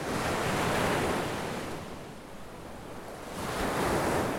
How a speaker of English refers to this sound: O is for ocean.